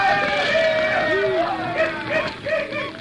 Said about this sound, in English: he headed for the bonfire and the howling mob that chanted, shouted, and danced around the flames, that sent unearthly tongues of color streaking heavenward through the silver-tinged blackness.